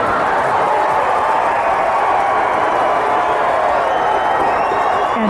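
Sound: crowd cheering and applauding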